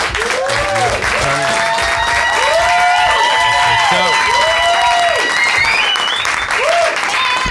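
crowd, audience applause

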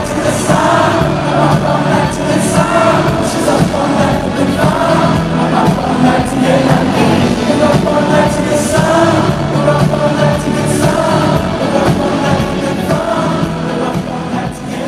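crowd, stadium crowd singing along

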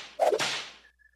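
sound effect, whip crack sound effect

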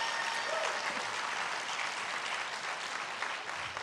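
crowd, audience clapping hands

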